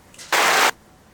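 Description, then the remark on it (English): A short, loud burst of clapping and applause for someone laughing after stepping in a cake, lasting under half a second, dense and hissy, cutting in and out abruptly with quiet before and after. “everyone was applauding you for laughing in that. Was applaud. See.”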